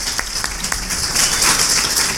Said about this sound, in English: How about a round of applause for early retirement?